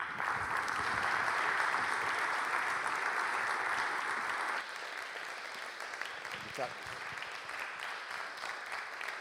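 A crowd applauds in a steady, dense wash of clapping that holds strong for several seconds, then drops to a softer, thinning patter as it winds down.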